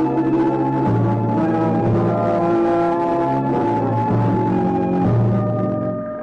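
A fire engine of the Greenville Volunteer Fire Department roars by, racing toward the Dexter Dean chemical plant at the southern edge of town, with a steady, loud, tonal wail that shifts pitch every second or so, holding strong before fading away at the end. No one speaks.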